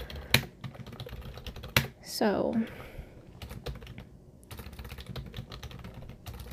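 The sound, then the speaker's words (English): Steady clicking of keys on a computer keyboard, fairly quiet, with a few louder taps and a brief spoken word partway through. “If you can hear me typing, that's your ASMR.”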